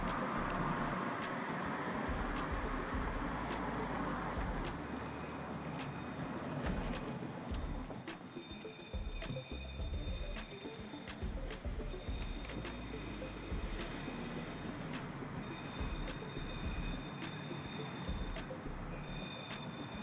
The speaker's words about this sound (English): We now take you to a very dramatic moment in time. A car driving down an alley.